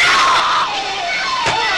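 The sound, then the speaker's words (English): A loud, piercing, unearthly shriek in a horror film trailer that sweeps downward in pitch over a second or so, then a sharp crashing hit cuts in near the end. No one speaks. “An unearthly shriek.”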